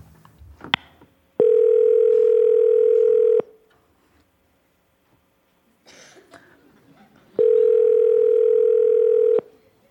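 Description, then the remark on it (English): Two long, steady ringback tones from a phone call to the caller's mother waiting to be answered, each about two seconds, separated by a pause with faint rustling and a brief click at the start. “Answer the phone.”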